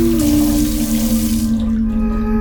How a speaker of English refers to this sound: Yazid heard the sound of running water before he saw Azmi signaling to him wildly.